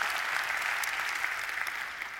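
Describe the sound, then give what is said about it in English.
Steady applause from an audience for the speaker's family, a dense, even patter of many hands clapping at once, holding a consistent loudness throughout the short stretch with no voices rising above it. “And yeah, you can go and clap for them because they are my favorite part of life.”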